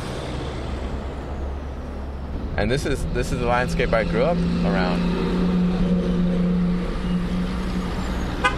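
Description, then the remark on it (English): Heavy truck traffic rumbles steadily on a road in Commerce, with a sustained low engine drone rising partway through, while a man speaks over the continuous roadway noise. “35,000 trucks pass through Commerce each day.”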